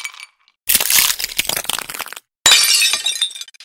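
drink glasses clinking

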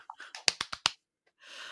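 golf clap

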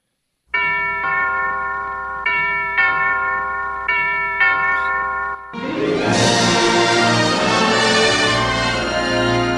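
doorbell ringing

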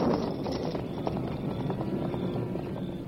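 horse hooves clip-clopping

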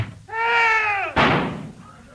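door slamming shut

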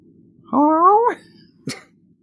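cat meowing

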